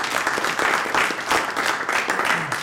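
An audience breaks into sustained applause, a dense, steady wash of many hands clapping at a fairly loud level for a few seconds with no one speaking over it.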